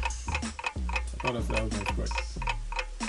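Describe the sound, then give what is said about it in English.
A countdown clock ticks steadily for a 30-second timer, in a fast, even rhythm, roughly three ticks per second, crisp, with a low tonal hum running underneath like a countdown cue. “you got 30 seconds to tell us all the great things about Alabama. Your clock starts right now.”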